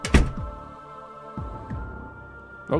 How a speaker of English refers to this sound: Watch as I exit the door, and you feel abandonment. Okay, go ahead. Here I go,